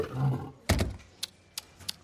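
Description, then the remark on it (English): A lion gives a brief, deep rumbling growl that swells into a loud roaring burst, followed by a few sharp, scattered knocks and clicks in the quiet afterward. “Oh, God, there's a lion! There really was a lion!”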